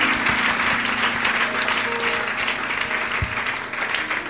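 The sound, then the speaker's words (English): An audience gives God a round of applause, clapping steadily for a few seconds in a dense wash with no break, holding fairly loud throughout with a faint low hum underneath. “You can give God a round of applause.”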